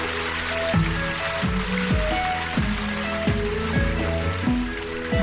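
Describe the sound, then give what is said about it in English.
River water flows in a steady, continuous rush, with melodic music with repeating swooping notes playing over it throughout. “A beautiful river. This is more like it.”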